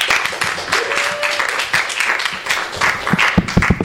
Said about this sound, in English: Let's please give her a warm round of applause.